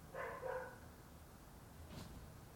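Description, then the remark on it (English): A dog barks a couple of times in quick succession, a bit muffled, followed by a softer yelp-like sound a moment later. No one speaks. “Sorry, my fucking dog was being an asshole.”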